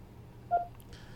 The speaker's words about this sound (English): Uh-oh. I hear your phone's ringing.